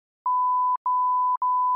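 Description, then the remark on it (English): A steady, high-pitched censor beep bleeping out a man's spoken name sounds for about a second and a half, briefly cut twice, loud and clean with nothing else audible beneath it. “What will you say his name? We're gonna beep it out of the podcast.”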